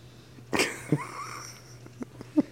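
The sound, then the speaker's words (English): A sharp snorting snore bursts out and trails off into a thin wheezy whistle, followed by a few short, soft breathy puffs. No one speaks. “She is snoring so fucking loud right now.”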